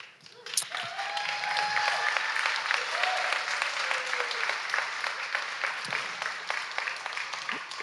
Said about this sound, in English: Y'all aren't supposed to clap yet. I'm not done.